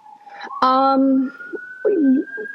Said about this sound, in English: I'm not sure if this is. Is that sirens? That's out here in you're Berkeley. Not New York City. In Berkeley.